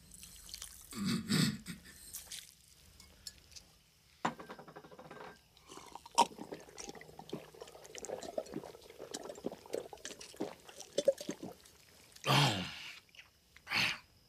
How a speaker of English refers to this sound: There's also a note here that during that sequence, the crew had to shoot 15 takes of Edgar drinking the sugar water.